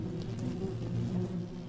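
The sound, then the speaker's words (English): A loud, deep vibrating hum from a swarm of cubes, like a swarm buzzing, drones steadily without a break and holds at an even low pitch throughout, with no voices present. “The vibrating, the loud humming that they produce shakes your very stomach, your core, as if you were standing too close to a speaker too loud.”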